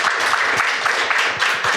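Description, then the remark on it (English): A crowd applauds the panelists steadily at the close of a panel event, dense overlapping claps forming a loud, continuous wash of sound with no voices standing out. “So let's give our panelists a big round of applause.”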